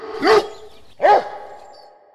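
Two loud dog barks about three-quarters of a second apart, each a deep, resonant woof from Oberon, a working Clumber Spaniel, with a faint tonal hum lingering underneath. No one speaks.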